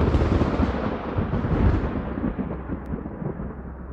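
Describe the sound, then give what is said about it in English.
A deep, sustained rumble of thunder rolls on through a storm at night, loud at first, then slowly fading as the low roar trails off, with no voices. “It was a dark and stormy night.”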